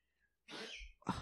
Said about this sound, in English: Y'all, if you hear my dog, excuse him.